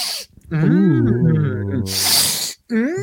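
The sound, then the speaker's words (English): Someone imitates loud, harsh snorts of cocaine through the nose as an impression of Shawn Michaels: two hissy, forceful sniffs separated by a drawn-out, wavering vocal groan, ending with a brief voiced sound. “This is me doing my impression of Shawn Michaels for the years he was not wrestling.”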